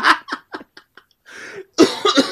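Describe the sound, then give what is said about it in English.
A loud coughing fit right up close: one strong cough trailing into smaller, fading hacks, a raspy inhale, then another harsh burst of coughs. “As I wipe the headphones with this nigga coughing right in my ear.”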